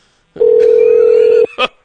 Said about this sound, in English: We're going to bring him in on Skype. Mr. John Matthews, hopefully he picks up that phone.